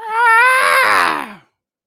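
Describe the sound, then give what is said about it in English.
A person voices a single high-pitched, screechy imitation of the Godzilla roar, a loud, strained cry held for over a second before trailing off and dropping in pitch. “Well, that actually, so fun fact, that sound, the Godzilla roar.”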